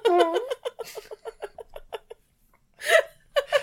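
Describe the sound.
A squeaky, droning fart noise like a sad trumpet, starting with a wavering tone and breaking into a quick run of sputtering pulses, followed after a brief pause by bursts of laughter.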